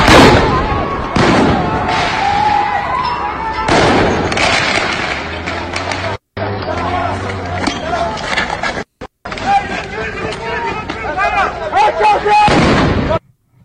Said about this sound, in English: Here they are throwing grenades at police in the street. This is fun.